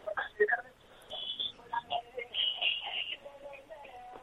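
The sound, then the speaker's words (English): A pop reggae song plays tinny and thin through a phone line, a sung vocal melody over muffled backing, fairly faint and continuous with no talking. “I think he just played it and then just kind of lifted the phone up there.”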